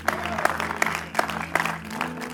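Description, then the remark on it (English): An audience claps their hands in praise of God in a dense, steady burst of applause, with sharper accented claps standing out at a fairly regular pulse over a low sustained tone underneath. “Come on, that's a great place right there to clap your hands and give God the praise.”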